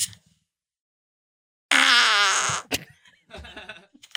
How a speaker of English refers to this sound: Now we got a trumpet one. The funniest part to me is that there's so many different people in the world and so many different kinds of farts that come out of their buttholes.